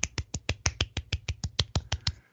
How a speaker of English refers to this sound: So during the pandemic, I want to give you a little golf clap right now.